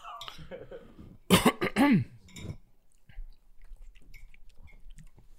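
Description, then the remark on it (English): Someone eating chicken while on air, with soft, irregular chewing and mouth sounds, interrupted by a sharp, loud cough-like burst and a short voiced noise partway through. “Eating on air is so stupid, but it's so good.”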